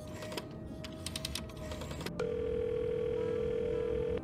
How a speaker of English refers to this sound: Entering the booth, he dials that one phone number he knew by heart.